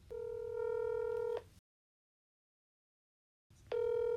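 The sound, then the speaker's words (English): Telephone tones before a call: a steady electronic phone tone sounds for about a second and a half, falls silent for two seconds, then starts again, clear, with no voices. “Cue phone calls.”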